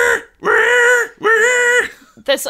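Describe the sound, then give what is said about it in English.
A man's voice, a wrestler in a submission hold during a match, lets out two long, strained, high-pitched screams, like a squealing pig being slaughtered, followed by a short cry; it sounds loud. “I guess that it is, but he sounds like a pig being like slaughtered.”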